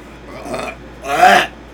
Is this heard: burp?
yes